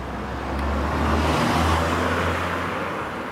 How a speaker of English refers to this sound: Oh my goodness. There's a car.